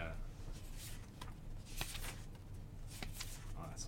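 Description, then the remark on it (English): Comic book pages being turned: several soft, papery flicks and rustles spread across a few seconds, over a low, steady background hum. “Even the sound of pages turning.”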